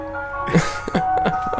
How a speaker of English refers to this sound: If anyone wants an ice cream, the ice cream van's here. That is the loudest ice cream truck I've ever heard. That comes like a church bell. I know. He comes at exactly the same time every day